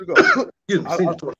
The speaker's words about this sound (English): Hey, I see you coughing over there, so I feel like this is perfect product placement, ladies and gentlemen.